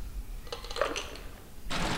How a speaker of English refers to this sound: And then I'll be adding some ice to the glass.